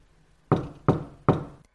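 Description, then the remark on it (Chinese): Three firm knocks on a door, evenly spaced and loud, each with a sharp attack and a short fading ring, with quiet before and after. “请进，把门反锁一下。”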